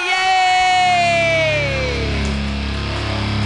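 A comedy show audience cheers loudly, with one long whoop sliding downward in pitch over a dense wash of audience noise that continues steadily to the end.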